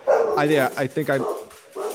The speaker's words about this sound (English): Was it the dog barking at you?